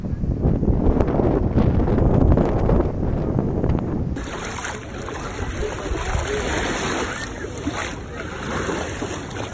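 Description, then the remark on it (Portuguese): Steady wash of a calm, crystal-clear sea at a beach with coconut palms in summer, a soft continuous roar of small waves with wind rushing over the microphone as someone walks on the sand, shifting to a thinner, hissier texture partway through. “Eu adoro tomar banho de mar e nadar no mar, especialmente um mar de águas cristalinas e calmas, como este daqui. Agora eu estou caminhando na areia.”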